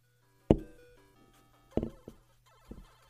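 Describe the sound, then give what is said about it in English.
Several hard knocks of a device thump against a microphone, with a loud bang, two more blows a second later and a softer final tap, each leaving a brief ringing decay over a low steady hum. “I don't even know where I hear it banging against the mic.”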